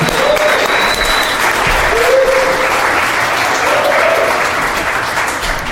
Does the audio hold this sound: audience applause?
yes